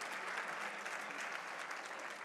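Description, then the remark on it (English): An audience at a Georgia Chamber of Commerce event claps steadily for a panel and the women who spoke that day, a dense, even wash of many hands with no pauses and no voices standing out, holding a fairly constant level throughout. “How about another round of applause for not just this panel, but all of the amazing women that spoke today?”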